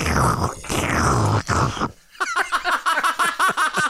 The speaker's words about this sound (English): Here we go again. My I'm going to have a nice sip of this coffee.